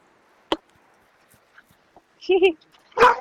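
A dog barks in short, sharp bursts: one quick yap, a pause, then a doubled bark and a final loud one, clear against a quiet background.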